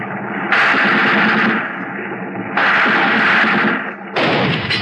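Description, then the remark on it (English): Bursts of sustained gunfire, loud and rattling, in three long volleys separated by brief pauses where a lower rumble continues underneath; shots fired in front of another ship to slow it down. “We fired in front of him.”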